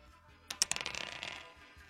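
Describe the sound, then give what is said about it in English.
Dice are rolled to set a player's handicap in a game: they clatter onto a hard surface, a few sharp clicks followed by a short rattling tumble that quickly settles, fairly quiet, with no voices. “All right, Mr. Pinkman, if you'll roll the dice”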